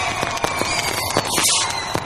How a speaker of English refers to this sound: Oh, jeepers. Fireworks in Studio Lumo. It was close. It went just over my head.